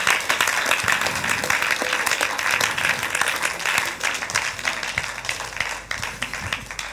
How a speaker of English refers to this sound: Clap your hands for God.